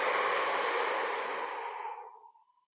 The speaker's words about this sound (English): One hand over your forehead like you're taking your temperature. And you're just going to hold. You're just going to hold here and breathing in the nose and out the mouth.